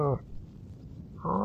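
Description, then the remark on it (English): A cow moos loudly, one deep drawn-out call cutting off early, then a low rumbling lull before a second long moo begins. “Oh, it's that cow from that joke.”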